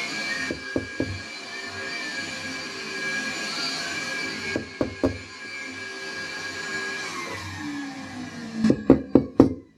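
Sharp knocks on a door come in short bursts, two or three at a time, ending in a louder, insistent run of about five raps, all over a steady droning hum of household machinery.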